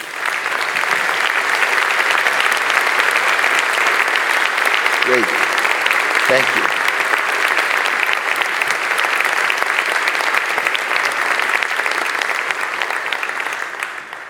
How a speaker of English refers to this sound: So if you'd all stand, we can give them one last round of applause.